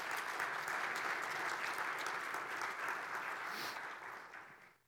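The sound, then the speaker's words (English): An audience applauds steadily, a dense wash of clapping that holds level for about four seconds and then fades out quickly at the end. “Come on, let's applaud some courage.”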